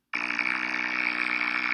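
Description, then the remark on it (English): A raspy, buzzy sad trombone sound effect, somewhat like a foghorn, plays as one loud, sustained blare that holds a steady pitch for well over a second, with no speech over it. “There's like a foghorn Trump going on there. There's our little raspy trombone as well.”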